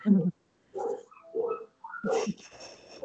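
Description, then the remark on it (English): A dog barks in a few short, spaced bursts, with a person's voice overlapping toward the end. “Sorry, we're going to pause for a dog break”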